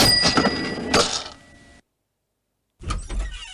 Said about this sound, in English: Now, if you were kind of, you know, on AOL Messenger back in the day, you might remember these sound effects.